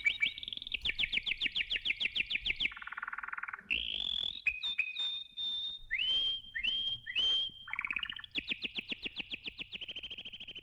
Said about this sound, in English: when Ottorino Respighi chose the trees as a focal point for capturing the city of Rome in music, he set his scenes with such fidelity that he went so far as to include this recording of birds in the score.